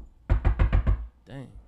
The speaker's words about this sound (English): Knock on wood.